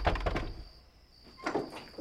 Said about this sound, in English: On April 15th, 1865, Dr. Samuel Mudd and his wife Sarah were awoken by a supposedly unexpected knocking on their door at 4 a.m.